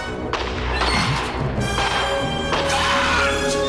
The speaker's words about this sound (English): The raptor actually breaks through the glass.